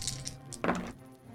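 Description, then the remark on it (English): An action die and two challenge dice for a roleplaying game roll clatter onto a hard surface: a few light clicks, then a brief, louder rattling tumble that quickly settles, landing a 3, a 4 and a 5. No one speaks. “They're both plus one, so Arid is going to roll at plus one.”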